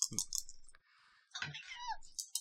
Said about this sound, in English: Go ahead and roll three dice.